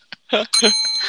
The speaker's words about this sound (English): Oh, man, I almost broke the Grifka bell. Hold on.